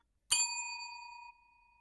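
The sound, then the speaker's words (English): A single bright bicycle bell ding rings out clear, its metallic tone lingering for about a second before fading, with no talking around it. “I have been waiting since my first show to use that bell.”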